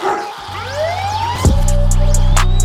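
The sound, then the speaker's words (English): Sweeping siren wails rise and fall over a dense, loud mix, with a sharp burst near the middle and a steady low drone filling the rest of the short stretch. “Gunshot dog bark siren.”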